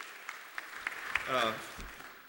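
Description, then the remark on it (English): Scattered, uneven hand claps from a group ring out at a moderate level, applauding those standing who have known Jesus for more than 70 years for their faithfulness, with a voice calling out briefly in the middle as the clapping continues sparsely. “If you've known Jesus for more than 70 years, and I still see a few standing, let's just applaud them for their faithfulness in the Lord.”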